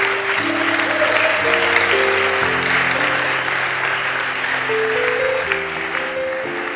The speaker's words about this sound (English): Oh, you are clapping, clap well.